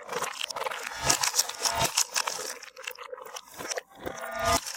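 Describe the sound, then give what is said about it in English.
A dog's chewing played in reverse: irregular crunchy, scraping bursts that swell and cut off abruptly, with a wet, grinding texture and no voices. “I'm going to make it even crazier by taking that recording of him eating in reverse at two different points in the recording.”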